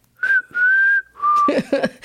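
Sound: human whistling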